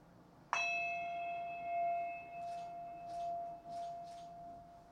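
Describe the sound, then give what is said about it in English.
A single bell is struck once to end a meditation, and its clear, shimmering tone rings on steadily for several seconds, slowly fading, with faint soft rustling sounds in the quiet background. “When I ring the bell, you can open your eyes.”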